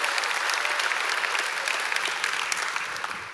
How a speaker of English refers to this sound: Can you help me give these guys a big round of applause? They're pretty amazing, pretty amazing.